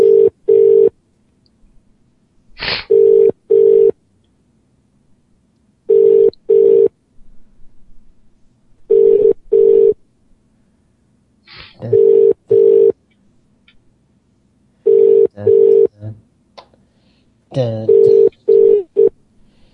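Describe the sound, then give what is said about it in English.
Telephone tones sound while a number is dialed, which turns out to be invalid: steady mid-pitched double beeps repeat about every three seconds, with a few brief bursts of talking between them. “Oh, invalid phone number.”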